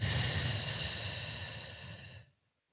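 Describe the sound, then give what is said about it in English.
A deep, audible breath, inhaled through the nose and exhaled out the mouth: a steady breathy rush lasting about two seconds that gradually softens, then cuts to silence. No one speaks. “Let's just take a big, deep breath together, right? Inhale through your nose. And exhale out your mouth.”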